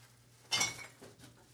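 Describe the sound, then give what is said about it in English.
A handmade, locally crafted ceramic jug from a pottery studio, used as a bourbon bottle, is picked up: one bright clink and brief scrape, then two softer knocks, over a faint low hum with no talking. “Here, let me grab it.”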